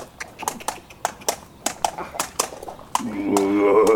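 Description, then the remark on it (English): A horse named Boyle: its hooves clop in a steady rhythm for several seconds, then it lets out a loud, wavering whinny at the end. “Even your horse, Boyle, finds your body odor offensive.”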